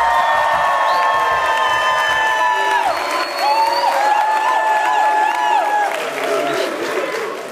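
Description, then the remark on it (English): A lively live studio audience on the campus of Texas A&M Commerce in Texas applauds and cheers continuously, with whoops and shouting voices rising over dense clapping, loud throughout. “Wow, what a great lively crowd.”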